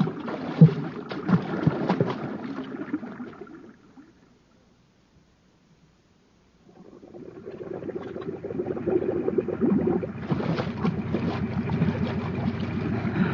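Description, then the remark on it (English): Loud water splashing and sloshing for a few seconds as people dive under the water in a flooded shaft, then a brief near-silent gap, followed by steady churning and splashing water resuming and continuing to the end. “We'll dive under long enough to get to a place where the water doesn't fill the shaft.”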